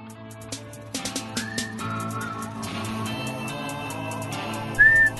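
A loud, clear whistle rises briefly over music with a steady beat, after fainter whistled tones earlier. Nobody speaks.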